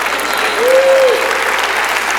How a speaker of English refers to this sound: Y'all was clapping on that job thing. Y'all didn't clap on that marriage thing right there.